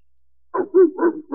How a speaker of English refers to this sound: Oh, dog, huh? Listen to that, dog!